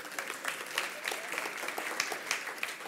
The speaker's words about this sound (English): So again, another round of applause, please.